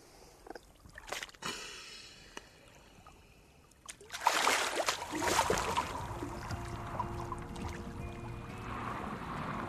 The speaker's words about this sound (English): gets into the water from a pontoon under Ben Bulbin and starts breathing up for his dive.